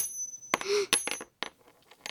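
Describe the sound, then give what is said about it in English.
Several sharp metallic clinks, like coins dropping and bouncing onto a hard surface, with a brief ringing tone and a few lighter taps scattered over two seconds, fairly loud, no voices. “You know, coins can end up in the oddest places.”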